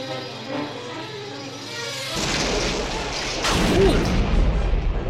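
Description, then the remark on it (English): After a quieter tonal stretch, a sudden loud explosion erupts into a sustained, noisy roar of rumbling debris, with a second burst swelling partway through and continuing to the end. “That's such a good explosion.”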